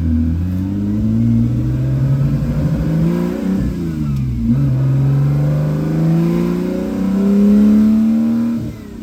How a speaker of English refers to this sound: With its race-bred V12 engine singing out front, gated shifter banging through the gears, and a mechanical symphony reverberating throughout the aluminum interior, this was my automotive nirvana.